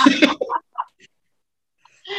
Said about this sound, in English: Sorry, that was my puppy in the background coughing, if you heard her.